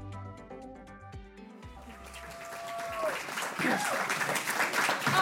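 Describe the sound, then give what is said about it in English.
A few seconds of tonal music give way to live audience applause at a panel event: dense, steady clapping from a large crowd that builds and grows louder to the end. “Oh, I love this clapping.”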